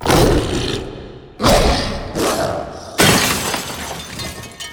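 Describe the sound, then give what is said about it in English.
Mirror glass shatters loudly in a few sharp, crashing bursts, with shards tinkling and scattering between the impacts. There is no talking. “Some have said that they have literally felt as if a mirror was shattered in their mind, or that something had broken inside them into so many pieces that they couldn't repair it.”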